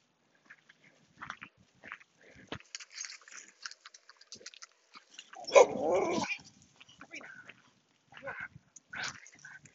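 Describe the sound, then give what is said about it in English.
A big German Shepherd outdoors lets out one loud, rough bark in the middle, with a shorter sharp burst near the end, surrounded by faint clicking, scuffling and chewing-like sounds. “And there's a big German Shepherd out there.”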